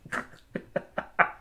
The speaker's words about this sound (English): Okay, and we'll do our clap. 3, 2, 1.